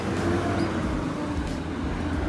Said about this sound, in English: But, excuse the truck for a second here.